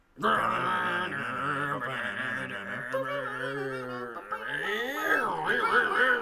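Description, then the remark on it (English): A person imitates a car engine with a loud, continuous buzzing vocal drone that drops in pitch midway, then swoops back up like revving through gear shifts, lasting about six seconds. “you do the car noises.”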